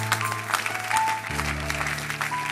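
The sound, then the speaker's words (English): An audience claps steadily, a dense, uneven patter of many hands, over sustained low keyboard tones that shift to a new chord midway through. “Anybody who is rock clapping sitting by you, they are the one I'm talking about.”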